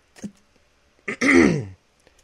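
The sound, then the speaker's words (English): A short throaty cough with a quick breathy catch before a louder, rasping burst that trails off, alone with no talking. “Excuse me, I had a cough there.”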